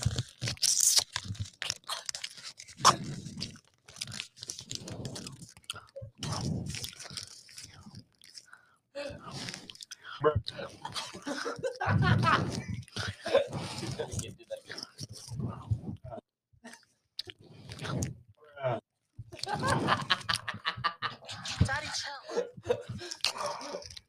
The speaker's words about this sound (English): Give me a sizz. Actually, no. I'm doing crinkle bump chewing noises.